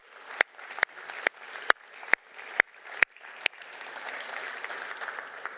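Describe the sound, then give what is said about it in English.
Congregation applause at a church service for people who have served or are serving in the military: a run of about eight sharp, evenly spaced claps over a crowd murmur, then merging into a steady, fuller wash of clapping that carries on to the end. “And let's just have a round of applause for everybody who has or is.”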